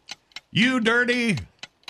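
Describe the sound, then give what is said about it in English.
A game timer for a 30-second round of a word game ticks in sharp, evenly spaced clicks, briefly broken up by a loud, steady, sustained tone before the crisp ticking resumes. “Start the clock.”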